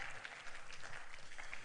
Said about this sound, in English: Thank you, worship team. You guys are awesome. Aren't they cool? Let's give a big round of applause.